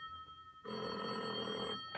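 telephone bell ringing

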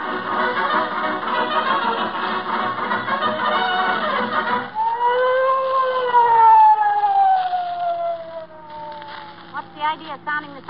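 police car siren

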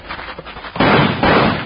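wooden door slamming shut

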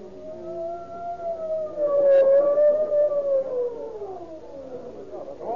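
approaching ambulance siren

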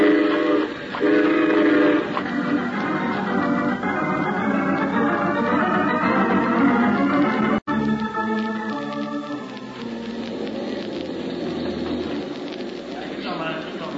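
train running on rails

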